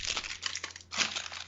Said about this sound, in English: crackling CVS receipt. It's 7.5 feet long and is used to kill a spider.